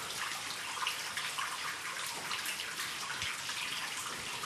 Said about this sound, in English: And over here to the left, the water is flowing quite a lot. This is a ventilation shaft, Air shafts, we call them in the pit.